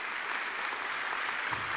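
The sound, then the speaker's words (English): An audience applauds for newlyweds in Germany in a steady, dense wash of clapping with no breaks or swells, many hands together for about two seconds and no voices standing out. “Just applaud for them real quickly.”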